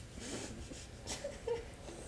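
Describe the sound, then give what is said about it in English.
Someone blowing their nose on camera: quiet, breathy bursts of air with a couple of brief whistling, honking squeaks midway, and no talking. “Is it weird to blow my nose on camera?”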